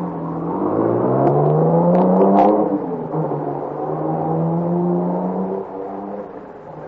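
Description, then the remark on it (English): A car engine revs up, its pitch climbing and then settling into a steady drone as the car, carrying several men, pulls off through a village, with a brief dip near the end. There is no talking. “They all pile into the car and take off through the village, supposedly after me.”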